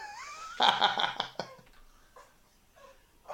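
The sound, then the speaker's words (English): A dog named Moss lets out a rising, whining hoot, then a loud burst of harsh, rapid hooting yelps, followed by a few faint short whimpers. No one speaks. “Just waiting for my dog to stop hooting for a second.”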